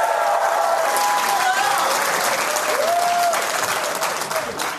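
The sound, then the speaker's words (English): Sustained applause from a live audience in the theater at Largo on La Cienega, Los Angeles, a dense, steady wash of clapping that stays loud throughout, with a few faint whoops rising above it. “I didn't get it out before you started applauding.”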